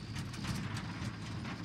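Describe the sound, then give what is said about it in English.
A bus pulls into the main area of a camp with a steady, deep engine rumble, a quick rhythmic clatter of knocks and rattles running over it for the whole short stretch, with no voices. “A familiar low rumble. It's the bus.”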